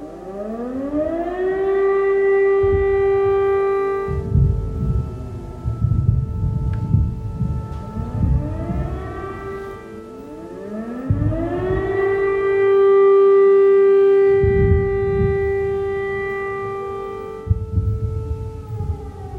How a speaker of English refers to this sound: And now the sound of an air raid siren with the background sound of explosions.